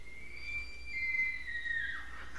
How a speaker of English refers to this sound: That's elk.